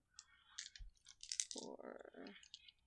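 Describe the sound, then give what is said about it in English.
Dice rattle and clatter across a hard surface, a quick burst of sharp clicks and tumbling knocks lasting a couple of seconds, with no one talking; the dice are rolled for a close combat roll. “Come here, dice.”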